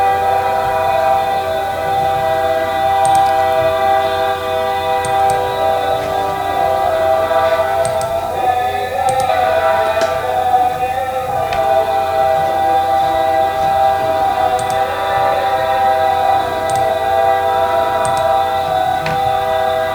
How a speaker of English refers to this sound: And our last selection has to do with the train. And I've included some sound effects to try and heighten the effect. This is known as the Bahn, the train.